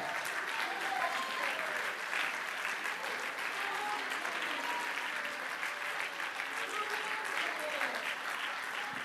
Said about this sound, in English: Would you stand to your feet one more time and just clap your hands unto the Lord.